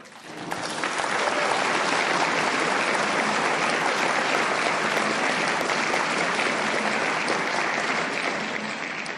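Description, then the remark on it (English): A crowd gives the speaker a round of applause, rising quickly and holding steady as a dense, loud wash of clapping for about nine seconds, with no clear voices above it. “Let's give our speaker one more round of applause.”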